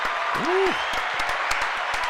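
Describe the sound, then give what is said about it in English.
Steady, dense clapping from an audience fills the whole stretch, responding to the performer announcing six years sober. Sharp individual claps stand out, and a short rising-then-falling vocal whoop comes near the start. “Round of applause for me, please.”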